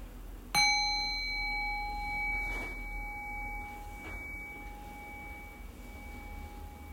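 A singing bowl used as a meditation bell is struck once, its bright, clear tone ringing out and slowly fading over several seconds into a quiet background, with no voices present.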